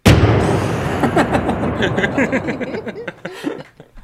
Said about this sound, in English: All right. Well, I guess we're firing the cannon.